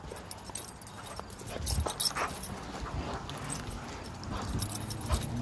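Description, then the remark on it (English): A dog barks and whimpers excitedly, with jingling collar tags and scuffling movement through the whole clip, fairly quiet and busy without pauses. “Be a crazy dog.”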